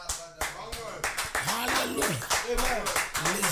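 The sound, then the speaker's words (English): An audience claps for the Lord during the Supernatural Hour broadcast, in a steady, sharp rhythm, the loud crisp claps overlapping with raised voices calling and singing out over them. “Clap for the Lord.”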